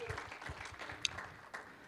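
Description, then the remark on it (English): A church audience applauds steadily as a new church website is shown, a dense patter of many hands clapping, with a brief sharper clap standing out partway through. “You can clap now. There you go.”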